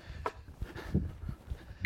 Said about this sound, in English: here's the beep.